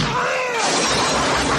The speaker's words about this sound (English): So I'm like, I need a good shotgun sound. So let me go into my shotgun sounds and, no, wait, I typed in the wrong one. Hard to kill shotgun. I remember gunshot hard to kill. Let's listen to this. Maybe this will be good.